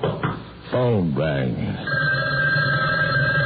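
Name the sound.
telephone bell ringing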